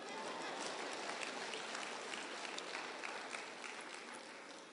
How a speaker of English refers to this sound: We're not clapping again, she?